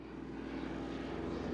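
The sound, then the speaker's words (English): The engines of a propeller-driven DC-3 airplane built in the 1930s drone steadily, a continuous throbbing rumble with a low pulsing hum that holds even and fairly loud throughout, with no voices. “bought a fixed-wing propeller-driven DC-3 through a company called Gopher Aviation that had been built in the 1930s.”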